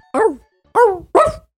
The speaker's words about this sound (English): Bark. Woof. Dog noise.